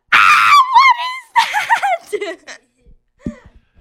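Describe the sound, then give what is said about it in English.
A person yells loudly into a microphone, a harsh sustained shout followed by wavering, strained vocal bursts that trail off into a few faint, short sounds. “Never yell into the microphone.”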